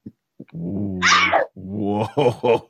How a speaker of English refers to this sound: Bless you.